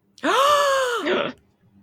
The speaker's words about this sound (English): Gasp.